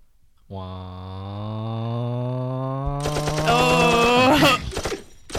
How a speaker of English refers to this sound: Want some gunshot? Oh, you want a gunshot? Let's hear it.